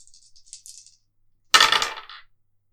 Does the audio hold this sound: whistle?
no